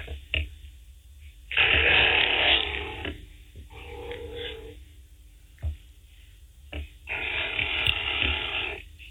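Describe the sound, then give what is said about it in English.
A platypus gives low, raspy grunting growls in three bursts, two long and loud with a shorter, softer one between, over a faint steady hum with no talking. “And they've got a sound that's like a low grunt or growl.”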